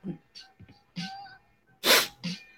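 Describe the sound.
A person fakes a sneeze: a few short, breathy vocal build-ups, then one loud, hissy burst, followed by a brief softer voiced sound.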